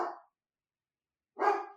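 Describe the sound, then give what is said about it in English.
A dog barks twice, a short bark at the start and a fuller one about a second later, clear with no talking, as the mailman arrives. “The dog was bound to bark right when we started.”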